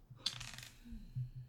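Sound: dice being rolled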